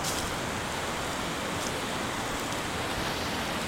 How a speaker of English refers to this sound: There is a waterfall in this creek. I'm gonna do something stupid. Let's crawl down this super steep hill and get closer to the waterfall.